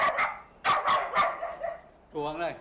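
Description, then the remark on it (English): A dog barks several times in quick, sharp bursts, then lets out a short, drawn-out whining yelp, in the countryside of Vietnam. The barking is loud, with no other sounds competing. “What's striking is the number of dogs out here. They're absolutely everywhere.”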